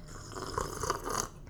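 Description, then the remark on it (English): A noisy, airy slurp of a very hot, freshly made drink lasting about a second and a half, with brief gurgling, whistly bursts along the way and no talking. “Let's just take a gorgeous long sip before we get into today's episode.”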